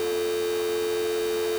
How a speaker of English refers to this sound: It's just like a dead dial tone coming out of the phone emitter that has been grafted where their mouth should be.